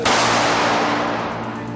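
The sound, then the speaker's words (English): A sudden loud gunshot cracks out at the start of an old news clip, followed by a long, noisy roar that slowly fades, on a hissy, humming old recording with no voices. “there are sounds of gunshots ahead in this old news clip from WTVJ”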